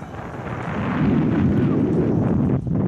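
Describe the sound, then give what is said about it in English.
Loud, steady wind buffeting a microphone during a bike ride with children, a dense low rumble that swells and holds with a brief dip near the end, with no speech. “So right now, I know you hear all that wind.”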